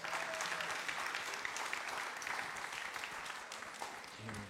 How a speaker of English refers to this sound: Come on, that deserves a clap, I'm sure.